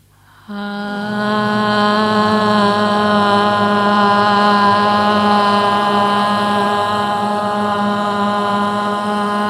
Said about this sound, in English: make some sound using as much of your chest and rib cage as you can. Let the chest speak, and I offer you the ah sound because for most people that helps this area ring a little bit.